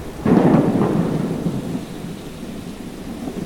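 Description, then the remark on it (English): A deep, loud thunder rumble rolls in suddenly and slowly fades, with steady rain hissing underneath throughout. “Rain started to fall, first in little drops, but then heavier and heavier. Lightning struck and thunder rumbled.”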